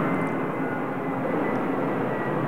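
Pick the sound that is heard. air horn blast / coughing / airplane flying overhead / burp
airplane flying overhead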